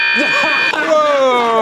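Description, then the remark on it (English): A bell being rung: a bright, sustained ringing tone with buzzer-like steadiness plays as a voice talks, then shifts into a shimmering ring whose overtones slide gradually downward, loud throughout. “I knew if I rang that bell long enough.”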